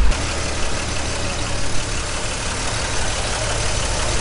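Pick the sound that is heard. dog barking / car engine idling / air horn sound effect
car engine idling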